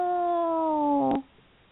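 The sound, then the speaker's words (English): A person voices a single drawn-out meow in imitation of a cat, a steady, nasal tone that sags slightly in pitch for about a second before cutting off abruptly, leaving quiet. “the God freak, the cat. Yeah, there you go. Meow.”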